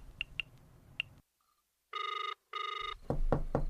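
A telephone rings in two short bursts, then a few quick, fairly loud knocks sound on a door in a steady rhythm near the end.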